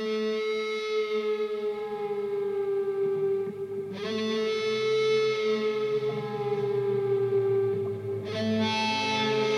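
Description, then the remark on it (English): Sustained, wailing electric guitar tones made by picking and bending the guitar strings as far as possible while using the volume knob, sliding slowly in pitch like a metallic moo, heavily processed with distortion and echo, loud and continuous with no talking. “That thing is just me bending my guitar strings.”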